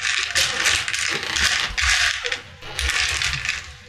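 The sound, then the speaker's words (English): A steady, busy clatter of many dice being stirred around in a chest during a tabletop role-playing game, rattling continuously with a few brief lulls and no voices. “We have a whole chest of dice.”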